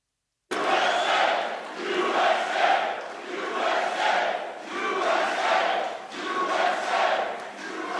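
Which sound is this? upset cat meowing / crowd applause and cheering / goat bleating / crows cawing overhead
crowd applause and cheering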